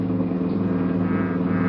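A police cruiser car engine hums steadily from inside the vehicle while patrolling the area between East 3rd and College Streets and Alameda and Figueroa at night in steady rain; a low, even rumble with stacked harmonic tones, continuous for the whole stretch, with no voices.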